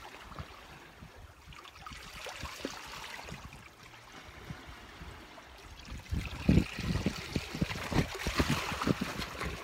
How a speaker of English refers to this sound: and then I looked down from the cliff and the water, it looks so magical. I just want to get in. Pretty cold though, and I feel like I could just stay here all day and watch the water flow, so changing and new.